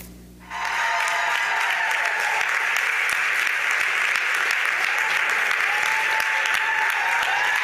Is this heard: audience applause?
yes